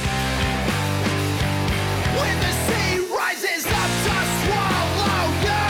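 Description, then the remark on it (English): A loud, dense song with harsh screamed vocals over heavy instruments, pausing briefly for a moment near the middle before the full wall of sound returns. “We don't get, like, full-scream mic too often.”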